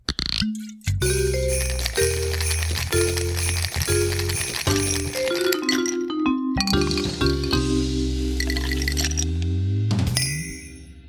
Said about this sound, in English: Had jingle bells in there, too.